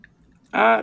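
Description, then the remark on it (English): Copper Harbor beer from a can pours into a glass in a short burst of liquid splashing. It has a rising, ringing tone and arrives suddenly after a near-silent moment, holding steady for under half a second. “You know, it poured very nicely. I got about 3/4 inch of head.”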